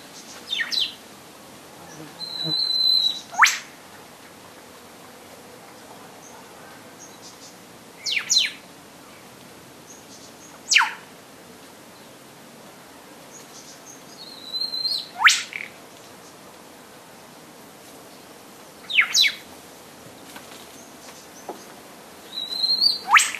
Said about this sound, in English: And back in Dorrigo, that whip bird is still practicing.